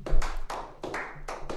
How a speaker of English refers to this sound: Damn, I got 3 claps, man. All 3 of them, bro.